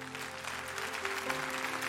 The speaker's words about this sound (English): Come on, folks, let's clap for them. There's some people coming.